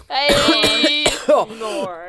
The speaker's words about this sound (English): I coughed because it was bad.